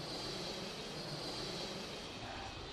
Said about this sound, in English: Your stomach lurches once again when the plane wheels make contact with the runway, and the turbulence of being on the road is even more violent of anything up until this point.